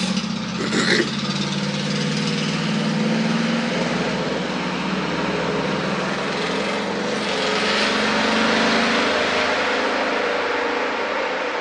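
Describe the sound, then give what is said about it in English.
Steady roar of road traffic with a low engine hum underneath, heard from a porch on a foggy, rainy day around 67 degrees, continuous throughout and swelling slightly as vehicles pass near the end. No one speaks. “Shout out to the traffic.”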